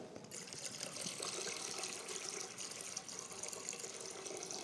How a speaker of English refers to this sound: he poured the water into the bowl.